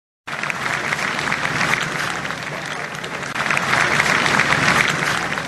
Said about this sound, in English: This evening, huge crowds of people outside Buckingham Palace have been spontaneously bursting into applause and cheering.